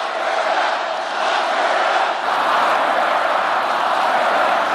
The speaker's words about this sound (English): The crowd gleefully bringing back an old chant.